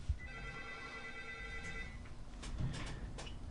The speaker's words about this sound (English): Hey, let's answer the phone, see who it is. All right. Hold on a second.